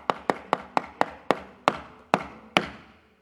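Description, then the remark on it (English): Nine sharp knocks on a wooden door, each one ringing briefly. The knocks start quick and gradually slow, with no voices over them. “Somebody knocking on your heart's door.”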